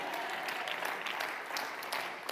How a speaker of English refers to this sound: Does anybody believe that? Can you clap your hands and can somebody shout amen? Amen.